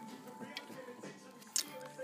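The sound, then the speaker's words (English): Someone rolling a joint of weed in paper, tucking loose strands into the bottom: quiet paper rustling and fiddling, with two brief crisp crinkles standing out over a low, steady background hum. “Put them right here on the bottom to fill in the space.”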